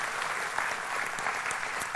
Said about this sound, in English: I want to welcome both of our campuses, our campus here at Noonan and our campus at LaGrange. I want both campuses. Can you give each other a big round of applause this morning?